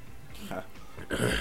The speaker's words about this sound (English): Oh, I got hiccups.